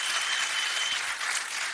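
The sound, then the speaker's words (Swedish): An audience applauds to thank a panel, a dense, steady wash of many hands clapping at moderate volume with no voices over it, sustained evenly for under two seconds. “Vi ska uttrycka ett stort tack till vår panel med kanske en liten applåd när vi har applådkraft i lokalen.”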